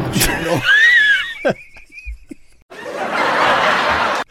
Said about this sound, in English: Canned laughter.